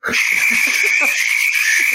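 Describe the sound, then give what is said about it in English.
Frogs croak loudly and continuously, used as a quiz buzzer sound: a shrill high trill held steady throughout with a few lower, irregular croaks underneath, with no voices. “It is from the Spotify playlist, Frogs at Night.”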